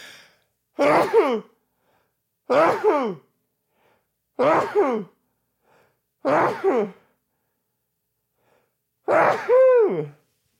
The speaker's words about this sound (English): Hang on a sec. I got to sneeze.